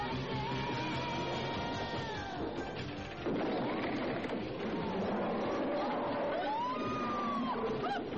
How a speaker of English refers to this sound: There is a giant rat in here, though. He's coming up, I think. Like a huge rat. He crashes through a wall.